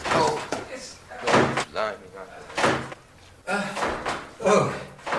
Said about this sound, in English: Mind the revolving door.